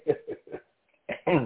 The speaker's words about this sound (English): And give me 1 second here. I'm sorry about that. And clear my throat and get a little drink of water there.